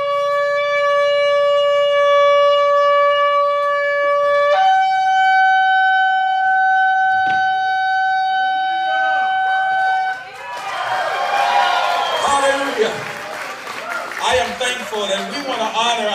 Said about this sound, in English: We wanna honor the Lord and we wanna thank him because Herschel's on the way and I wanna blow this shofar as a sign and a signal that the victory is in the house. The victory is in Raleigh, Georgia.